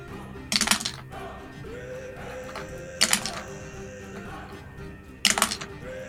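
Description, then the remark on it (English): A handful of dice, rolled for battle axe and smite damage in a tabletop game, clatters across a hard table three times, each roll a short, bright rattle of about half a second, spaced a couple of seconds apart over a quiet background. “So many dice.”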